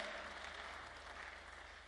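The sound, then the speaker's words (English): A crowd claps steadily, a dense, continuous wash of many hands applauding at an even level throughout, with no voices standing out. “Anybody that is clapping, that is your portion.”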